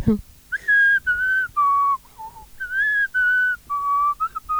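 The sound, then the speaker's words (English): Someone whistles the melody of a Christmas number one song, a clear run of sustained notes rising and falling in a steady tune after a brief sound at the start. “Yeah, we whistled by the same time.”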